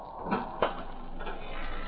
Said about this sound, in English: swing that door open, please, will you?